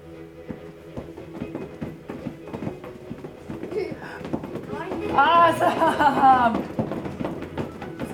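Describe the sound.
Children stomp their feet in a quick, steady rhythm like galloping horses, continuing throughout, with excited voices swelling loudly over the pounding partway through.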